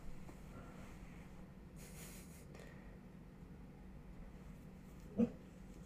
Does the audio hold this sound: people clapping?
no